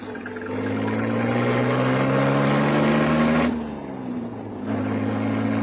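A car engine drones steadily as the vehicle pulls away after picking up a passenger heading near Manor's Field, its low hum briefly easing off mid-way, as if shifting gear, before picking back up. No one speaks.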